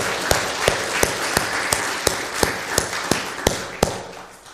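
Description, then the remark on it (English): An audience claps together in a steady, rhythmic beat, about a dozen sharp claps at an even pace over a wash of scattered applause, fading slightly at the end. “Can you like at least clap that God has placed that burden on your heart? That is incredible. Clap with me.”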